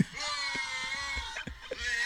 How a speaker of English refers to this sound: He didn't even get the words. He didn't know the lyrics. He's just yelling into it. He's just into it.